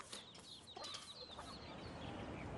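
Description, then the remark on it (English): Several chickens cluck and chatter in short overlapping calls over a steady outdoor background as they are fed at a riding centre soon after dawn, with no speech. “As always, his first job is to feed the chickens.”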